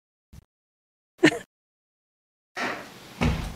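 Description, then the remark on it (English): A new door, after a little Raid bug spray is put on it, is opened and shut with a soft knock, a sharper clunk, then a brushing sweep ending in a thud, all without any squeak. “Our new door is squeaky, too.”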